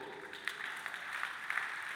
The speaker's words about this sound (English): You're clapping and singing the house right now.